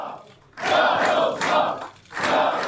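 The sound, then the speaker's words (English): A large crowd at a party's election-results event chants "We will win" in unison, three loud rhythmic bursts of massed voices separated by brief pauses. “There were chants of "We will win" in the crowd.”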